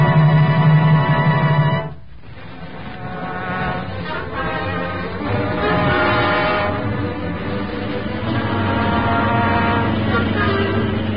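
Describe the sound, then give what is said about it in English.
A loud, steady buzzing drone from the Green Hornet's car, the huge, streamlined black Black Beauty, going very fast way down at the corner, rich and harmonic, briefly dipping near the start before surging back and holding strong to the end. “That's strange buzzing. What is it? That is doors. Way down at the corner. It's a car. But it's going so fast.”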